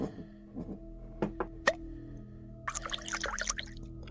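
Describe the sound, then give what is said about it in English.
Amber liquor from a bottle is poured to the very top of a small shot glass found beneath a bar, with a few sharp glugs and clinks followed by a brief, splashy trickle of liquid, over a low steady background hum. “I poured the drink to the very top of the shot glass I found beneath the bar and lowered my head to inspect it.”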